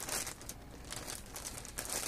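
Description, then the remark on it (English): Plastic bags holding bag clips crinkle and rustle continuously, with several sharper crackling bursts as they are handled and rummaged through. No one speaks. “I was just grabbing groups of four and putting them in two groups of four in each plastic bag.”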